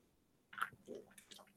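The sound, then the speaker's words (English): A quiet sip of Iron Brew soft drink: a brief wet slurp followed by soft swallowing and mouth clicks, with no talking. “Just taking a sip of Iron Brew there.”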